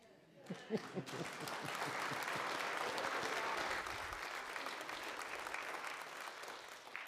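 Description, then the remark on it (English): An audience at a church service breaks into sustained applause, a steady wash of many hands clapping that swells quickly and holds for several seconds before tapering slightly, with faint voices underneath at the start. “You don't need to applaud.”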